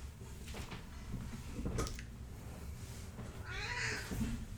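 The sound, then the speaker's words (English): A cat gives a single rising-and-falling meow near the end, preceded by soft bumps and rustling like something pawing at a door as the cat tries to get in, with no one talking. “Is Binks trying to break in? He is trying to break in. Should we let him in? Here he is. Meow.”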